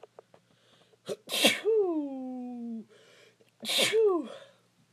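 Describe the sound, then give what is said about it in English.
Two loud sneezes, each a sharp burst of noise trailing into a drawn-out vocal tone, separated by a brief pause. “Ooh, sneezed right on my leg.”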